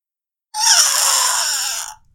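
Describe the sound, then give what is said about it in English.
A single loud, shrill scream holds for about a second and a half, harsh and exaggerated, then cuts off abruptly. No one speaks over it. “That's not what my internal screaming sounds like.”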